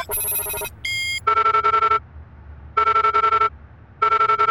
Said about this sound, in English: can you patch my phone to the home system and call Benjamin Abbey on speaker